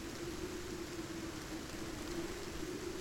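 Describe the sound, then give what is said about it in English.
Steady rain pours down in a dense, continuous hiss, drumming on a roof with a low, even rumble underneath. No voices, just the unbroken wash of falling water. “But now, for the first time in decades, ushered in by the shriek of the goddess, the Firbolg heard it, drumming on their roofs. A cold rain began to fall.”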